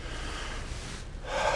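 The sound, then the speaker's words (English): An audience inhales deeply at once on a speaker's cue, a broad airy rush that holds steady, then swells into a louder breathy exhale near the end. No one speaks. “Everybody take a deep breath.”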